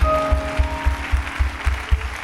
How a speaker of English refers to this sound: Come on, clap your hands.